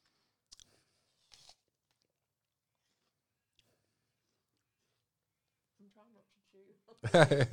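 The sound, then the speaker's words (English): Someone chews honeycomb during a tasting, with a few soft, sticky crunching clicks spaced apart in near silence, followed by a low murmur and then a louder burst of voice at the end. “No, I think part of the chewing,”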